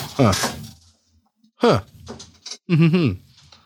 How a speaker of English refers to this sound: No more creaky creek, please. We got to get some new chairs. Yeah, we do. Got to get some nice chairs.